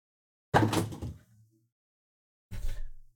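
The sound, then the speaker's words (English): A fridge door is shut twice, about two seconds apart: first a heavy thud with a brief rattling tail, then a second shorter knock. No one speaks. “Just close the fridge.”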